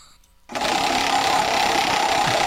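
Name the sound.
prize wheel spinning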